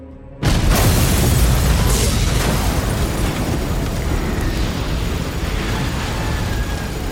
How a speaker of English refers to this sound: And then all of a sudden this explosion happens. And he's like, yo, there were people still in there.